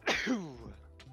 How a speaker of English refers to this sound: Nice sneezes there